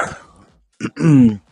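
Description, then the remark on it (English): Someone clears their throat: a brief rough burst followed by a longer voiced, slightly falling grunt, preceded by a fading breathy rasp. “Why are you clearing your throat?”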